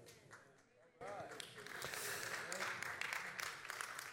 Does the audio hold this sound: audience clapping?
yes